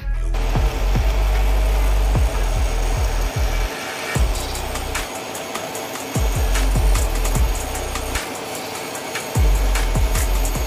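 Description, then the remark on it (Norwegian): A power saw cuts along a marked line, running steadily for about ten seconds, a loud buzzing whine with a high metallic edge, broken by quick low thumps and brief dips as the blade works through the cut. “Da følger vi bare den sagen stregen.”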